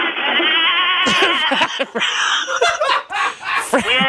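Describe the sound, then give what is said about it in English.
A goat sound effect on the Rick and Bubba show: a loud, wavering bleat, then a string of choppy, stuttering bleats and snickering bursts that carry on to the end. “We are going to hurl the goat.”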